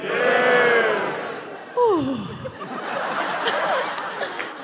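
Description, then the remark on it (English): Audience members playing the heroes in a told story cheer and whoop on cue, with a sharp sliding yell rising above the crowd, then settle into a steady murmur of excited voices and light laughter. “There is a cheer from the heroes.”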